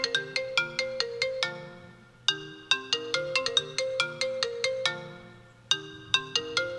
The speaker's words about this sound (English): So, what do we do when we hear a phone call?